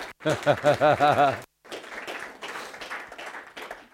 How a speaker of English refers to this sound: Give them a big clap. They did a great job.